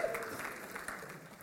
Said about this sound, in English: That's awesome. Can we thank them for that, whoever they are? They're not here, but clap anyways.